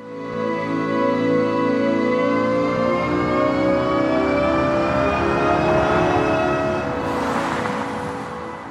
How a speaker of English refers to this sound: And now some of her team's work is becoming actual design, like this sound that plays as a Nissan electric car accelerates.